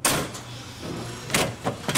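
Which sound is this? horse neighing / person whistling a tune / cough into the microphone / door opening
door opening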